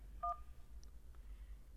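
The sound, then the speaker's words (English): A single short electronic keypad beep, a two-tone telephone button press made to send a message in an automated phone menu, sounds clearly over a low background hum, followed by quiet line noise. “To send your message now, press 1.”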